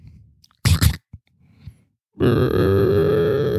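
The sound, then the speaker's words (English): A voice imitates a creaking playhouse door swinging open. After a short breathy burst and a faint click comes a long, loud, buzzy vocal creak that drags on for over a second, slowly bending in pitch. “do the sound of a door opening”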